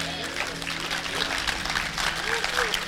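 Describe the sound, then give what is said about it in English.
An audience claps in a steady, dense wash of many hands, fairly loud throughout, with a low murmur of crowd voices mixed underneath. “Go on, clap.”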